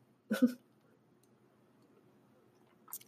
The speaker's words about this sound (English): I need to take a sip of a hydration for this.